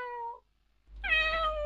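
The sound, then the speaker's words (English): A cat meows twice, a short high mew followed after a brief pause by a longer, louder, drawn-out meow with a low hum underneath. “Beautiful meowing.”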